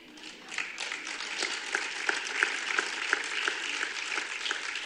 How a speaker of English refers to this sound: Now, are you just clapping because I said don't get mad at me? Or do you really believe that?